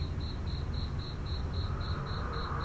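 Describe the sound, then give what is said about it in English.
Cricket noises played from speakers in David Jove's cave: a steady, evenly spaced rhythm of about ten high pulses in a few seconds, over a low, constant background rumble. The chirping is fairly soft and there is no talking. “David had these speakers in the cave that he played insect noises from. Crickets, bird chirps.”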